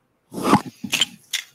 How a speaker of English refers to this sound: The fuck is my dog barking at? I don't know. No, he's just an asshole.